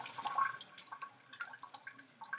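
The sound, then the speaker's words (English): Juice squeezed from the other half of a lemon drips and trickles into a second bath of water for chicken, a quick run of small splashy drops, fairly quiet, with no talking. “Also, the other half of the lemon by squeezing the juice into the water.”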